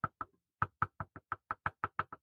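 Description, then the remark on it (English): Knocking on wood: two quick raps, a brief pause, then a steady run of about a dozen hollow knocks, fairly loud and evenly spaced, with no talking. “Knocking on wood that everybody's healthy this year.”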